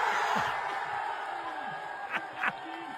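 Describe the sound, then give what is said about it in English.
A large crowd at an Italian burping festival cheers and roars steadily for a few seconds, a dense wash of voices with two sharper bursts of whooping near the end. “What about the crowd go off? That sounds like a stage crowd.”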